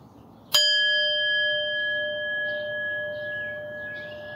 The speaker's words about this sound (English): And when you ring that bell and hear it reverberate, it can just allow you to tune in and to be centered.